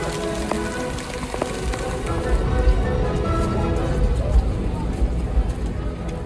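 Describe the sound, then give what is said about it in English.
Heavy rain pours down steadily at Jazz Fest, a dense, continuous hiss and patter of drops hitting surfaces, with faint indistinct voices murmuring somewhere beneath the downpour. “It is raining really hard, as you can see.”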